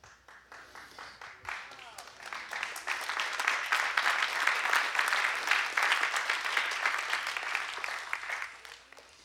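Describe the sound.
An audience breaks into applause, quick scattered claps building within a couple of seconds into a dense, steady roar of clapping that holds to the end, with some voices mixed in.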